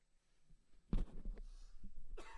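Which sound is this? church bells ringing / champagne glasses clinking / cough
cough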